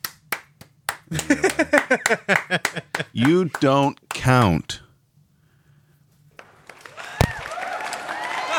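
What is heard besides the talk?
soundboard applause and cheering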